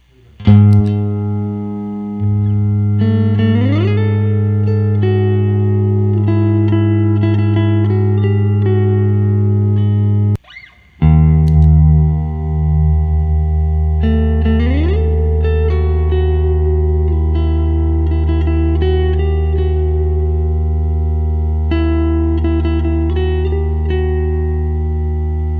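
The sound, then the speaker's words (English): Tense flat-five and flat-two intervals, the two most dissonant intervals in music, on a buzzy electronic instrument: a loud low drone holds while higher notes slide and step above it, cutting out briefly midway before the clashing tones resume. “But the two most dissonant intervals in music, the flat five and the flat two.”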